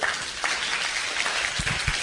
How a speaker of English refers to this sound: Okay, Joint Chiefs of Staff, you may be seated. Clap for the Joint Chiefs.